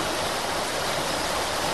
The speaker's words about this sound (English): I was going to pretend we were by a river by playing a river sound effect.